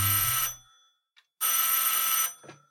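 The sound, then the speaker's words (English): A telephone rings loudly: two bright, buzzy bell bursts separated by a short silence, with no voices in the background. “Ding-a-ling. Oh, the phone.”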